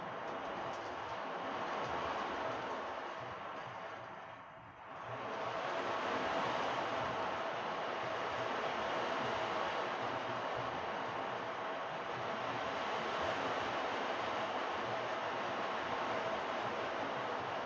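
An ocean drum moved only slightly and shaken gently with the left hand to mimic rain, giving a steady, dense hiss of rolling beads that briefly thins out once before resuming its constant patter. No one speaks.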